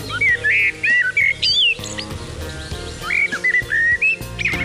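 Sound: blackbird song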